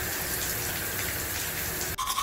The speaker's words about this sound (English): Took a shower,